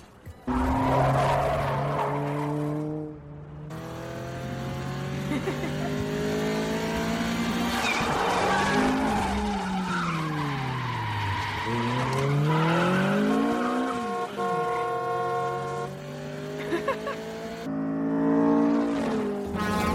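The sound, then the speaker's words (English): A car engine revs hard and shifts through gears while tires squeal and skid in long sweeping wails, loud, as Mia takes Brian for a ride in her car, with no one speaking. “The date ends when she takes Brian for a ride. But actually in her car.”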